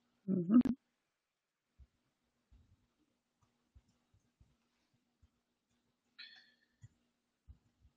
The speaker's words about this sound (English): Fat fingers typing.